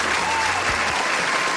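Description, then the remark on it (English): A crowd claps steadily in applause for God, a dense, even wash of applause that holds at a strong level throughout with no pauses. “One applause for God.”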